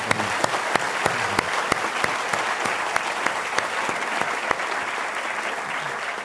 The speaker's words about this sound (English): Let's give him another round of applause.